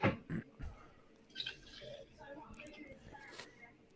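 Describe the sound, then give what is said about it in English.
Water is poured on top of coffee extract and ice cubes in a glass of iced coffee, in short splashes and drips, with a quick burst at the start and quieter liquid sounds trailing off, faint voices in the background. “We're gonna add a little bit more water.”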